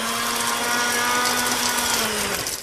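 A blender whirs steadily at high speed, a loud, dense motor roar with a constant hum underneath, running without pause for a few seconds and easing off slightly at the end.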